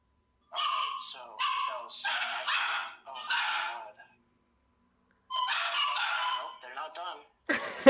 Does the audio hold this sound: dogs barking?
yes